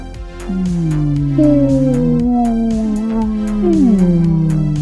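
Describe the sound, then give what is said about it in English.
A voice imitates a whale call with long, sliding, moaning tones that swoop up and down, sustained and fairly loud for several seconds with no words. “Make a whale noise.”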